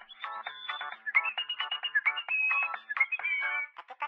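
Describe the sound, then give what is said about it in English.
A phone ringtone plays a fast, high-pitched, sped-up song with chirpy, squeaky melodic phrases, steady and fairly loud, with no one talking over it. “Wait, Blair, is that the …? Yes. Yes, it is.”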